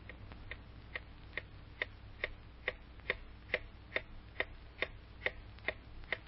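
A clock ticks steadily at an even pace, about two sharp clicks per second, with a soft low hum underneath and no voices.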